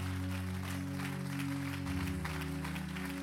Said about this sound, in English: Come on, if you believe that he's a healer, give him a hand clap all over these tents.